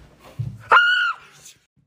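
A person lets out a single loud, piercing, high-pitched scream lasting about half a second, close to the microphone, with faint murmuring voices just before and after.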